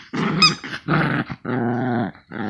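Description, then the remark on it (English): A dog growls in several rough, rumbling bursts while playing tug of war with a toy hedgehog, with a higher squealing edge in the first burst, each growl sustained and loud with short pauses between. “Playing tug of war here with a hedgehog. A toy hedgehog.”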